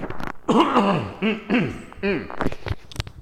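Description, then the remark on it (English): A person coughs, a short run of harsh, rasping bursts with a throaty, voiced edge, like clearing the throat several times in quick succession. “I have to cough.”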